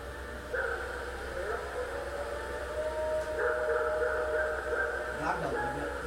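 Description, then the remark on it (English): A long, wavering howl holds steady tones that rise and fall over several seconds, sounding eerie against a constant low hum, with a brief descending wail near the end. “This is the Ohio Howl recorded.”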